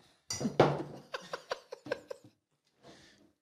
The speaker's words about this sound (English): Cheers. Hold your beers up. Cheers to 40 ounces. Cheers.